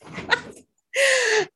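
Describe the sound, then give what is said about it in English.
A dog gives a brief breathy huff while being let out of a room, then after a short pause lets out a single drawn-out, high-pitched whine that dips slightly in pitch before cutting off. “If it's not the children, it's the dog, by the way.”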